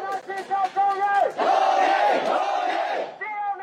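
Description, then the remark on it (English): A large crowd of demonstrators at nationwide protests shouts and chants together, the roar swelling into a loud sustained cry before breaking back into rhythmic yelling, energetic throughout. “Now there are nationwide protests with police using water cannon and rubber bullets against the crowds of demonstrators.”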